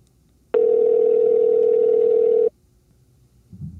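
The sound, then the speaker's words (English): A steady, loud telephone dial tone as a call is placed on September 10th at 4 o'clock, holding one unbroken pitch for about two seconds, then cutting off abruptly, leaving a faint low rumble behind. “All right, September 10th, 4 o'clock, calling Richard.”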